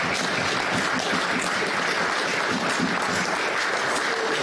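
An audience at a Sunday church service at NBC claps together in steady, dense applause, a continuous crackle of many hands that holds at an even loudness throughout, with no voices rising above it.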